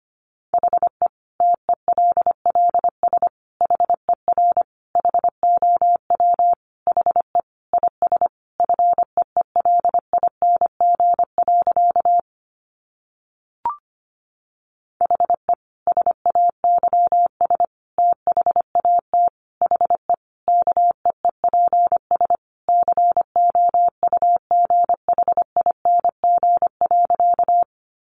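Morse code sent at about 25 words per minute, sending easy practice phrases: a single steady mid-pitched tone keyed on and off in rapid dots and dashes, with one brief pause partway through. No voices.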